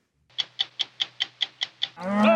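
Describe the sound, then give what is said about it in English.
Eight evenly spaced, sharp clicking beats lead into a loud, drawn-out cow moo rising at the end, with no one talking; cattle on the Green River Drift, a spring cattle drive in Wyoming where ranchers push thousands of cows along a 70-mile route. “Cattle ranchers in Wyoming who every spring push thousands of cows along the same 70-mile route their ancestors pioneered 125 years ago.”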